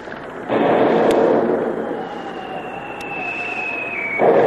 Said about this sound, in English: How do you feel, Captain? Oh, I'll be all right in a few minutes. That explosion knocked the wind out of me, that's all.